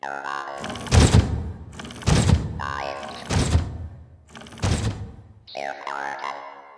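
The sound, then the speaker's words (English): Four heavy, evenly spaced footsteps thud one after another at a slow walking pace, over a faint humming tonal background that ends with a brief warbling sweep. “The sound of footsteps walking away.”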